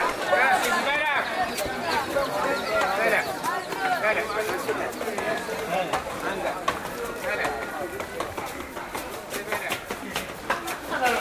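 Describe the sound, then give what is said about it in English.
A busy, echoing passage in a narrow alleyway of the ancient walled old city of Fez (Fez el Bali), too narrow for cars, filled with overlapping crowd chatter and footsteps, with sharp hoof clip-clops of donkeys passing at an uneven pace. “So the traffic inside Old Fez is mostly people and donkeys.”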